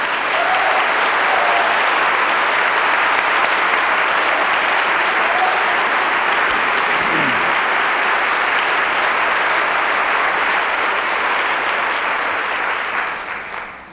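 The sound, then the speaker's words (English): Loud, sustained standing ovation for Marian Wright Edelman at the Westminster Town Hall Forum, Westminster Presbyterian Church on Nicollet Mall, downtown Minneapolis: a dense steady roar of clapping from a large crowd that holds at full strength for over ten seconds before starting to taper at the very end. “You are listening to the Westminster Town Hall Forum, originating from Westminster Presbyterian Church on Nicollet Mall in downtown Minneapolis, where we have just had a standing ovation for Ms. Edelman.”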